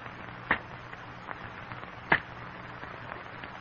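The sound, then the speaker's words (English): Two sharp, crisp cracks of cane knives striking sugar cane stalks, spaced well apart, with faint rustling and small snaps of falling cane leaves in between over a low steady hum. “In the strained silence, the men listen to the sharp crack of cane knives on stalks of cane, the crackling of falling cane leaves.”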